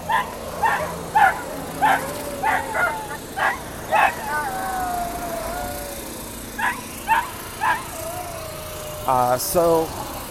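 Several dogs bark in short, repeated bursts with higher yips and drawn-out whines, over a steady low rumble of passing traffic outdoors in Los Angeles, heard while someone walks a dog.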